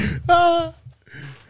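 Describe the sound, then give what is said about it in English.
A voice imitates a groaning breath: a short, strained, tonal groan, then a softer breathy exhale after a brief pause. “Just that breathing, that groaning to it.”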